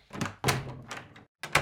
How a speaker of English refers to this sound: There's another matter. The door. I locked that door. He just opened it and walked out.